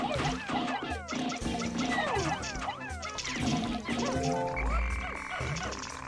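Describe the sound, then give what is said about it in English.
A video game frog enemy croaks repeatedly amid a busy, continuous mix of chirpy sound effects and background game music, all fairly loud, as the player fights two frogs. “I wish I was better at combating frogs.”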